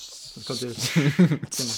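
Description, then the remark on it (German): A voice imitates the fizz of a carbonated drink: a steady, bright hiss running under short voiced bursts, with a brief pause before the hissing resumes. “Und vor allem auch wichtig, das hast du schon am Anfang gesagt, keine Getränke mit Sprudel. Mit Sprudel, ja, genau. Sonst hört man so.”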